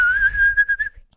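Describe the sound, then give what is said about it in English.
A steady whistled note held for about a second, breaking into a few short wavering pulses before stopping, over a faint low rumble. No one speaks. “All right, I can hear the wind whistling through your ears there, so we better move on.”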